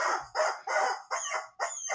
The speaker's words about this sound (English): I won't even begin to tell you what that rubber chicken just said about you, Greg. He is angry. He is pissed. He is one hell-bent rubber chicken.